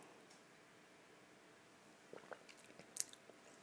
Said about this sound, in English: But anyways, I gotta take another sip of my coffee.